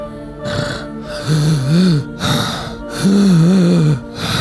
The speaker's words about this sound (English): As you continue to talk, you can hear a breath, a ragged breath, like someone just behind you struggling to take a breath.